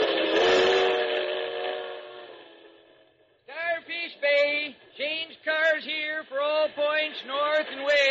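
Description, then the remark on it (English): A loud, long steam train whistle blast that slowly fades out, then a quick series of shorter rising-and-falling whistle-like toots in an uneven rhythm. “Hey, conductor, isn't this a through train?”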